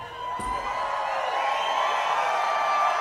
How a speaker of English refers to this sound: Can you imagine cheering for that?